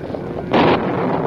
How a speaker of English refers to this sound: It not rain, but there be plenty lightning. Much thunder.